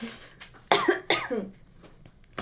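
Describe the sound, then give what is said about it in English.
A person clears their throat with two harsh, raspy bursts, fairly loud, followed by quiet and a faint click at the end. “I need to clear my throat chakra.”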